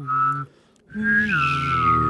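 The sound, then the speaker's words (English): A person whistles a clear high note while humming a low note underneath, in two steady phrases separated by a short pause. In the second, longer phrase both pitches step down together. “You know when you can whistle and hum, like...”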